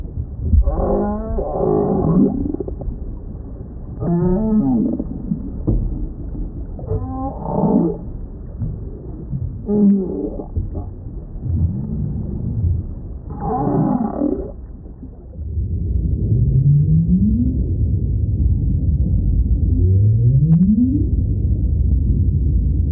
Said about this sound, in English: We leave you this week with voices of the northern right whale in Cape Cod Bay.